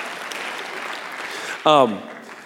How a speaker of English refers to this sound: And on the cover it says, A New Way to Be Human. And I'm like, who does not want a new way to be human? That is exhilarating. So thank you for clapping for my subtitle. Thank you. Appreciate that.